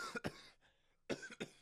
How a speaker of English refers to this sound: I'm like, I'm about to cough and all this. Like, I'm a real passionate fan.